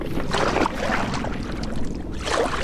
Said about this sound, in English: With a push, our canoe begins its journey down the river.